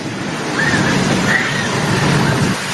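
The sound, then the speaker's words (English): A heavy ocean wave crashes ashore in Southern California, a loud, sustained rushing roar of churning water filling the whole scene, with faint high screams of people running rising briefly in the background. “SoCal Gets Hit With Freak Monster Wave”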